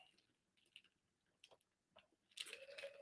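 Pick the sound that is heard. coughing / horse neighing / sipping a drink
sipping a drink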